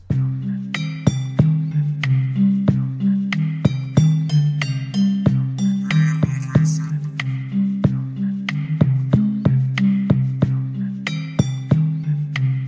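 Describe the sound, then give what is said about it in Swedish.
A short instrumental jingle for the 'Vad har du i glaset?' segment, recorded and sent in by a listener: a bouncy, steady low bass line with bright, glassy clinks and ticks marking a regular beat, played at a steady volume with no voices. “Det där var ju alltså gingen för Vad har du i glaset?”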